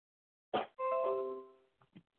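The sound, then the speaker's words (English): A computer notification chime: a sharp onset, then a bright, multi-toned ding that rings out and fades over about a second, followed by two faint, short blips. No one speaks. “My phone is just going, or my computer is just going off like crazy. Let me go. You can hear ding, ding, ding, ding, ding.”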